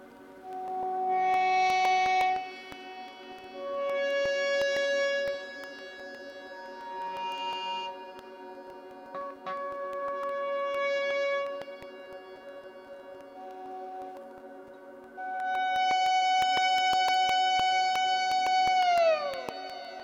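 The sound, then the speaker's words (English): Electric guitar with echo delay plays long, ringing sustained notes in swelling phrases separated by brief gaps. Repeats trail under each note, and the final held tone bends downward in pitch. “Oh, I forgot an echo. There we go. There's always more delay to be had.”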